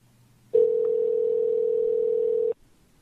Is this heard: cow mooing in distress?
no